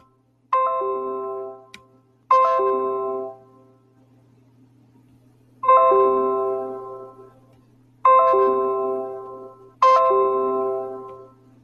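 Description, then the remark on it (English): Five bright, bell-like chimes, each a sharp ringing onset with harmonic overtones that decay over about a second, arriving at irregular intervals over a faint low hum, with no talking. “Excuse the notifications. I'm trying to get these to stop right now so I can get back into this.”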